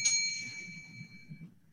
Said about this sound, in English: All right, guys, you have the time. We're going to be ready, and I'm ringing the bell. Let's go.